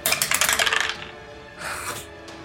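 A die rolled in a tabletop game clatters across a hard tabletop in a quick burst of rattling taps, landing on a 6, then a second, softer tumble follows after a brief pause, with no talking.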